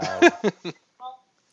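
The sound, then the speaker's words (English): A phone's ringtone gives a single short, clear electronic chime for an incoming call, following a few quick voiced bursts from someone. “Grella's calling you.”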